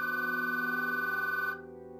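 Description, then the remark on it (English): A telephone rings with a steady, warbling electronic tone as an outgoing call is made, held loud for about a second and a half before dropping to a softer, duller hum. No one speaks. “I pick up the phone and make the call.”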